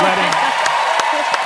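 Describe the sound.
A crowd applauds and cheers for Ireland, with steady claps landing about three times a second over a dense, noisy wash of voices.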